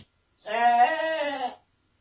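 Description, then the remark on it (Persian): A single drawn-out sheep bleat, loud, lasting about a second with a wavering, nasal tone, heard alone against silence. “گوسفندای مردم دارن جون میدن.”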